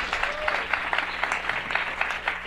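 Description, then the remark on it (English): An audience at the start of a show claps for the first guest, a dense wash of many hands with sharp individual claps popping out in an uneven rhythm, sustained at moderate loudness throughout with no talking. “My first guest, you can applaud, Merry Christmas.”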